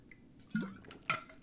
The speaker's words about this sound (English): Have you had any water? Yeah, I'm drinking water right now.